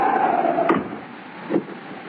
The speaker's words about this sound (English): There's no one there. I shut the door.